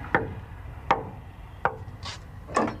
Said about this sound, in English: Now, it is not possible to enter this chamber until you knock three times. The most sacred shrines belong to the Oba himself, and I'm taken to see those by one of his sons. So I'm going to knock at the door three times before I open it.